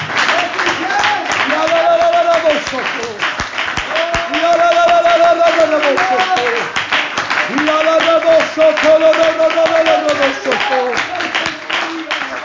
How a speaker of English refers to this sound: If you believe God can fill somebody with the Holy Ghost this morning, I want you to clap your hands with all of your might for a few moments. Come on. I believe God can do it.